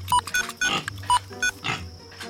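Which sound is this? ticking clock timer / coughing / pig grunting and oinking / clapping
pig grunting and oinking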